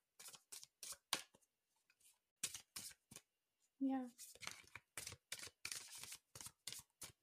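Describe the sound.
A deck of tarot cards being shuffled up close: a steady series of crisp, papery snaps and flicks, with a short pause and a brief spoken word partway through.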